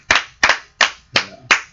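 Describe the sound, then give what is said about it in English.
Five sharp hand claps at a steady, deliberate pace, each crisp, with brief quiet gaps between them and no voices. “Here with us in celebrating, if you heard a little extra clap action, we got a special guest here with us this episode.”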